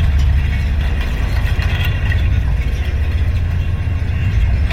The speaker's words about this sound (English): The wind was blowing these stalks of grass against the lower strand of the wire fence.